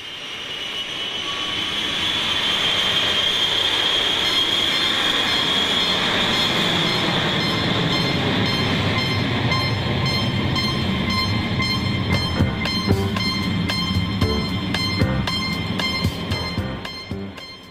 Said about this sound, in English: So let's start at the beginning. You hear that airplane engine and that high-pitched tink, tink, tink sound?